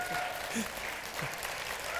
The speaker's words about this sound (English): So for 60 seconds, let's just put our hands together and applaud and celebrate the Easter time of Jesus Christ. Come on.